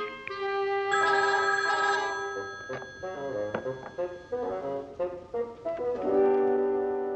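A telephone, the Wayne phone, rings loudly in two long, bright bursts with a run of shorter pitched tones between them. No one speaks.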